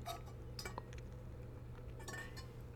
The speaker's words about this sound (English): Excuse me, that's me drinking my water.